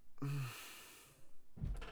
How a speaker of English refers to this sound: I'm getting aggravated. I know why the door is getting slammed, and that makes me more aggravated.